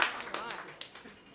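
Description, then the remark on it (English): Brief crowd applause at a Variety event, a patter of overlapping claps that starts strong and thins out over a second or so, with a voice speaking faintly underneath. “So please, that deserves a massive round of applause.”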